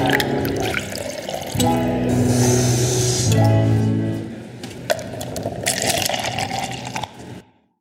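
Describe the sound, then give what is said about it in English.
Coffee pours steadily into a cup for several seconds, a continuous splashing gurgle that swells midway and then tapers off to silence. “So stick around, pour yourself a cup of coffee, put your feet up, and take a little coffee break with me.”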